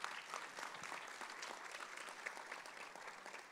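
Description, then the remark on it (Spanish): An audience applauds together in thanks to God, a steady wash of many hands clapping that holds at an even level for a few seconds, with no voices rising above it. “Ahora, amén, damos ese aplauso.”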